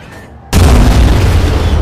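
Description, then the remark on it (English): After a brief quiet lull, an 18-inch naval gun fires with one sudden, earth-shaking boom, very loud, its heavy rumbling roar filling the air until the end. “Old anti-air gunner Sadaki Asano flinches at the earth-shattering boom of the 18-inch guns.”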